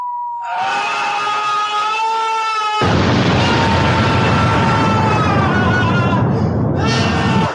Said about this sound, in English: What the hell was that? It was a bomb going off, and the guy was scared. That sounds very traumatic.